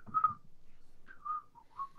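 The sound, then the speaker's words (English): Someone whistles a brief song melody, a few clear tonal notes rising and falling in quick phrases, at moderate volume, with no talking. “So there was too much whistling before.”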